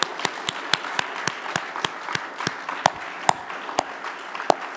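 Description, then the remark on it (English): Hands clap in a steady, even rhythm, about a dozen sharp, loud claps, over a continuous hiss of softer scattered applause from a group thanking their youth leaders. No one speaks. “Hopefully they're still awake to capture that thanks, and hopefully clapping your hands has helped you to stay awake.”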